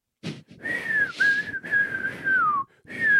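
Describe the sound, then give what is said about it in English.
A person whistles a steady, sustained tone in several long held phrases with brief breaths between, fairly loud, with a little breathy noise at the start; whistling as grandmothers do to get a young child to pee. “The grandmas, they whistle.”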